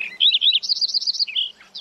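A Lincoln's sparrow sings energetically from a hedgerow on a sunny October autumn morning, a rapid, bubbling song of bright buzzy trills and warbled notes that shift in pitch, clear with no other sounds.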